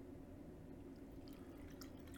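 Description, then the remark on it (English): Deep-steamed green tea pours steadily from a kyusu teapot into a glass, a continuous liquid stream with small bright splashes and drips scattered through it, with no voices. “And then we can just pour it into the glass.”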